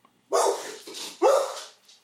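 A female dog barks twice, loud, with a softer, shorter bark between them. The barks come about a second apart, with no talking.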